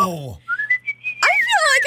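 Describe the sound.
A person whistles a brief tune, a clear, pure tone stepping upward through a few notes, before voices break in loudly at the end.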